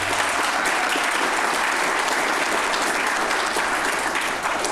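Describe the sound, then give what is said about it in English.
An audience applauds steadily for several seconds, a dense, crackling wash of many hands clapping at an even, loud level with no voices standing out. “I think we need an applause track for the regular episodes when we do this.”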